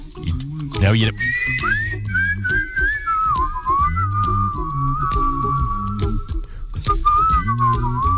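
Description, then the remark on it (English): Someone whistles a wavering melody, a steady sustained line that slides between notes for several seconds, with a voice talking or humming low underneath at times. “Don't whistle. Don't do the whistle. You don't need to do the whistle.”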